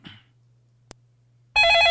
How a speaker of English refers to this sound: Oh wait, I'm sorry. I need you to say hello. You gotta answer the phone.